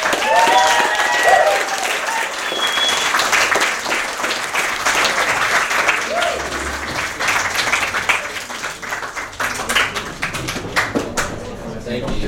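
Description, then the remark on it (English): A crowd applauds steadily for about twelve seconds to welcome a performer to the stage, a dense patter of many hands clapping, with some cheers and voices rising over it early on before the clapping thins out toward the end. “but can we give a warm round of applause for”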